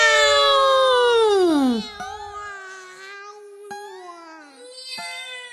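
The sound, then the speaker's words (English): Cats howl loudly from the roof of a house: one long, drawn-out yowl slides downward in pitch, followed by several quieter, wavering wails that overlap and trail off. “That made us howl even more.”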